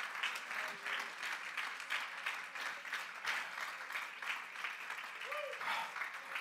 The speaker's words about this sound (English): Come on and give the Lord a hand clap of praise in this house today.